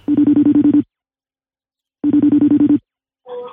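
A FaceTime video call to the Prime Minister, placed outdoors in the countryside beside a lit fire, rings out in two bursts of rapid, evenly pulsing mid-pitched tones, separated by a pause of about a second, followed by a brief voice.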